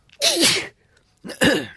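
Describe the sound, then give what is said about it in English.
Two loud sneezes in quick succession, each a sharp breathy burst with a brief voiced catch, separated by about half a second of quiet; a person sneezing onto their arm. “I sneezed all over my arm.”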